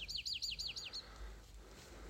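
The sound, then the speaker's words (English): A quick run of about six bright, high chirping bird notes in steady rhythm, fairly clear, from two birds of the same species calling back and forth, one to the left and one to the right, then a quiet outdoor hush for the remaining second. “Okay, so we have these two birds, the exact same bird. They're talking to each other right yeah.”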